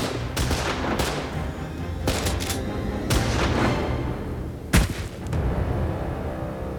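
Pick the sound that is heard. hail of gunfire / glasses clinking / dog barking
hail of gunfire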